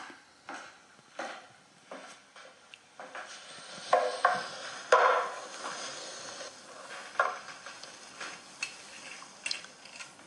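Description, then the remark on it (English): Alcohol being poured into a glass, a steady splashing hiss broken by a few bright glassy clinks around the middle, with no one speaking. “Pouring alcohol into a glass.”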